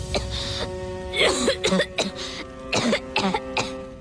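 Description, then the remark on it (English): Katara, a character in Avatar, coughs: a series of short, harsh coughs in irregular bursts, fairly loud, over a steady low hum in the background with no talking. “When Katara starts to cough too, and she's like, "Okay, I'm fine."”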